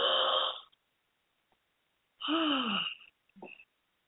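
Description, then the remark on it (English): Two loud, raspy breaths taken as big gulps of air through a wide open throat during a deep breathing exercise, one ending at about half a second and a longer one around 2.2–3 seconds, followed by a short throaty catch; no talking. “We're going to take in a big gulp of air.”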